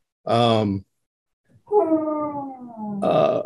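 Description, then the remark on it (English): A dog whines in three clear bursts: a short yelp-like cry, then a long drawn-out whine sliding downward, ending in a sharper rising whimper, with no talking over it. “Somewhere there's a dog whining. You can hear that quite clearly.”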